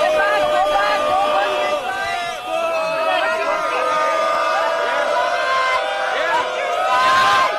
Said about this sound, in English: These are Palestinian protests in New York City, and they're screaming Allahu Akbar, which means God is great.